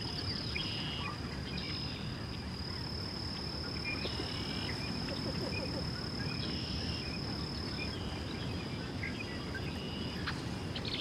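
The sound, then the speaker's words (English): Marsh birds, including red-winged blackbirds, boat-tailed grackles, several species of ducks and a few shorebirds, call faintly from the distance at a marsh, their scattered chirps hard to pick apart over a constant high-pitched insect and frog drone and a low rumbling background. “Listen to all the birds in the distance.”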